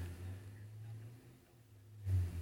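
A car that ran out of gas in the middle of the street being towed: a steady, low vehicle rumble that dips slightly midway, then swells louder near the end. No one speaks.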